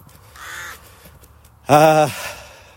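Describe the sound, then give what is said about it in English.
A crow caws twice, first a softer call, then a loud, harsh caw that rings briefly before fading into quiet background. “Crow is laughing at me. for not being able to remember the woman's name.”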